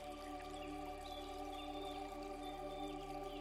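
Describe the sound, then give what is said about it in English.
Soft outdoor ambience: water trickles and pours steadily while faint bird chirps flit in the background, a quiet, continuous wash of sound with no talking. “Let's listen to an enchanted meadow.”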